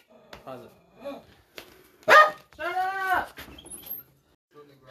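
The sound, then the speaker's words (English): A dog barks loudly a couple of times, one sharp bark followed by a longer, drawn-out howling bark, with some background speech around it. “Sorry about my loud ass dog!”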